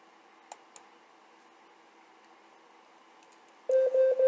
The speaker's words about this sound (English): Alexa. Alexa, stop timer.